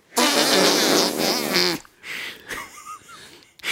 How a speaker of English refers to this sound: The scream before the shit sounds.